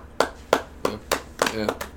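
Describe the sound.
Hands clapping in a steady rhythm, about seven sharp, crisp claps over two seconds, with a faint voice murmuring underneath toward the end.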